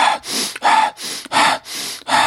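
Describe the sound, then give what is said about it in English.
A person demonstrates deep breathing with sharp, gasping deep breaths, loud and rapid, with about three quick inhale-exhale cycles in a steady rhythm and no talking. “Often when people think about deep breathing, they think about this.”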